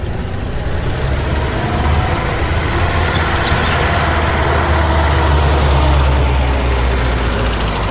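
A bus engine idles steadily, a deep continuous rumble with a faint mechanical chatter on top, holding an even loudness throughout with no voices; the bus is used for a 40-minute commute to the Thiokol plant, about 20 miles east of Woodbine.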